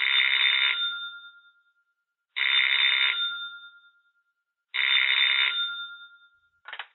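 A telephone rings in steady, evenly spaced bursts as a call is placed to the caller's mother's house, three full rings with ringing tails and the start of a fourth, clear with silence between them and no talking.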